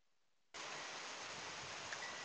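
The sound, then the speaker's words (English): Rain returning during a party, falling in a steady, dense hiss that starts abruptly after a short quiet moment and continues evenly, fairly loud, with no voices. “And the rain is back.”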